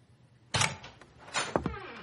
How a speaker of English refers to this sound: I hear the door open and hear his footsteps on the hard wood flooring.